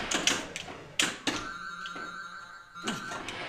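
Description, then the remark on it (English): A pinball machine's knocker fires several loud, sharp mechanical knocks at irregular intervals as the player earns a special, with the machine's electronic tones and chimes ringing steadily underneath. “Wow, that's a lot of knocks.”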